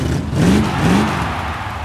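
A big, loud monster truck engine, one of two of the biggest monster trucks in the world set to compete at jumping at the historic fountain in honor of the DEFCON convention, revs twice in quick succession, each rev rising in pitch over a steady rumbling roar, with no voices.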